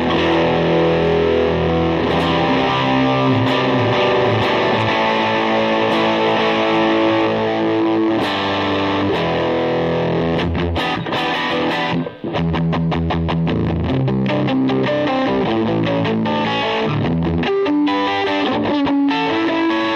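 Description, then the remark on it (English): An electric guitar played through a Joyo Blue Rain overdrive pedal, thick and saturated, ringing out sustained chords before shifting to choppier, rhythmic strummed phrases partway through. Loud and steady, with no voices. “It's called the Joyo Blue Rain.”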